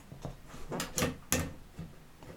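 A cupboard door opens with a short run of wooden creaks and clunks, three or four distinct bursts close together, fairly loud with no one talking.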